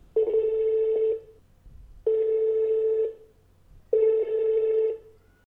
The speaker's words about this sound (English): So let's give her a call and see if she'll pick up the phone.